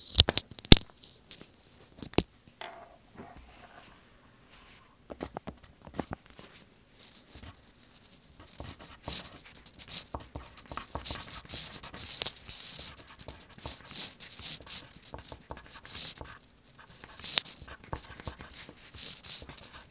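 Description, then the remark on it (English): Several pencils scratching on paper at once as students write answers on separate pieces of paper, a steady busy rustle of writing with brief pauses, moderately quiet, with no talking. “So for number one, you should answer on a separate piece of paper. the father has pencils. Okay? I want to hear all those pencils, okay?”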